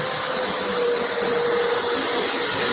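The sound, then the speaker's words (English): A very big truck rumbles past a window on 92nd Street in New York, its steady low engine roar and broad hiss holding for a few seconds with a faint humming tone on top; no one speaks. “It's a very big truck going by his window.”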